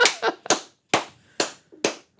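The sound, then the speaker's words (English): A handful of sharp, sarcastic hand claps, about six in all: three quick ones, then three slower and evenly spaced, with no talking. “Set your sarcastic clap.”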